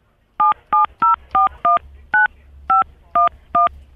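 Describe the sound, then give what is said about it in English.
Nine crisp touch-tone beeps from a phone keypad as an ID number is punched in, each short and evenly loud, dialed at a steady, slightly uneven pace over a low background hum, with no one talking. “Please don't punch it in on the phone.”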